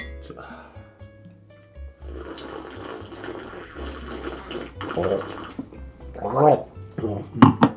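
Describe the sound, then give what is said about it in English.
Wet slurping as someone tastes red wine, drawing it across the tongue: a long airy gurgling suck followed by a few louder sputtering bursts and short vocal noises. “I'm not sure that sounds entirely necessary for wine drinking, but you've never been to a wine tasting, I have.”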